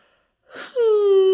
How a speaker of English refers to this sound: Apparently, occasionally yawns. Well, that's just because it's almost my bedtime.